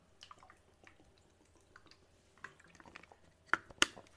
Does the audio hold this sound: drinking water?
yes